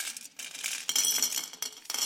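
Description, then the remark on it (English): Bright, rattling clinks of metal striking glass, several coins tumbling into a small glass jar in quick irregular bursts, fairly loud with no talking. “In practice, I have shattered this small jar doing this, so this could be fun for you.”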